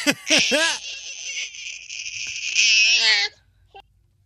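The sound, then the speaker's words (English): A hungry baby girl fusses and cries, starting with a few rising wails, then a sustained, strained high-pitched cry for about three seconds before it breaks off into quiet. “So now she's all super fussy in the back, right? Yeah, she's hungry.”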